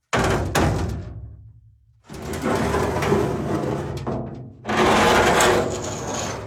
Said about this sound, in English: Do you like that door sound effect? What is it, a drawbridge?